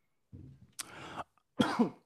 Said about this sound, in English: My bad, dog. I was coughing the whole time.